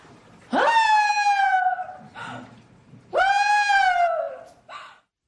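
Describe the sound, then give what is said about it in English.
A woman's voice, a witness in a court of law, imitates the screams she heard on Valentine's night 2013 in Pretoria, South Africa: two long, wailing, high-pitched cries that rise sharply then slowly fall, each ending in a short breathy sob, with a brief pause between them. “She recreated those screams she heard that night in a court of law”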